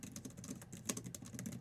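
Keys being pressed on a metal keyboard with magnets: a quick, irregular run of light clicks and taps, fairly quiet, with no voices.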